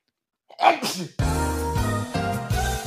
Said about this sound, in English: I'm sorry, I'm going to have to sneeze.